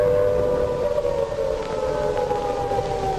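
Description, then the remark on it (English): A loud air raid siren wails steadily over London at night as a wartime air raid begins, its sustained mournful tone holding for the whole stretch with a faint low rumble underneath and no voices. “And there's the wail of the Banshee.”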